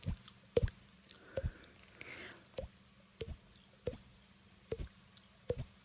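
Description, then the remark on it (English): A person makes water-drop sounds with their mouth: about eight hollow, resonant plops at a steady pace, fairly crisp. No one speaks. “I can only do that water drop thing.”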